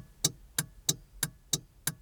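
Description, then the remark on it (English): A car's turn signal ticks steadily, six sharp clicks spaced evenly about a third of a second apart, crisp and fairly quiet with no voices over them. “But what about the not obvious until you point them out sounds, like the sound of the blinker?”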